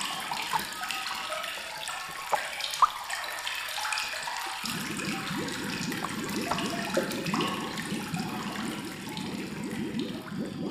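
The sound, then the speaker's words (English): Bath water runs steadily from a tap in a bathroom, a hissing, splashing stream that deepens into a fuller, lower gush about halfway through, echoing off hard tiled walls. No one speaks. “using the warmth of the water to soothe the haunting chills of the entity and to mute the mysterious metallic utterances still reverbing around the hard-tiled walls of her bathroom, muffling the words until they become a dull, characterless drone.”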